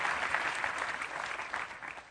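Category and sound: crowd, audience applause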